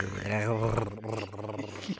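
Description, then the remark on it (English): A voice imitates a cat's purr: a low, rumbling, growly vocal sound sustained for about two seconds, fairly loud, with a wavering pitch. “He's purring.”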